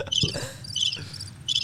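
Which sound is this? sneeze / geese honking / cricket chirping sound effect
cricket chirping sound effect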